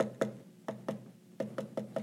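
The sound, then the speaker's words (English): A secret knock pattern on a wooden door: a single knock, two quick knocks, a short pause, then four in quick succession. The knocks are hollow and resonant, with no voices. “Now, we had a secret knock.”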